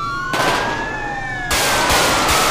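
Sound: gunfire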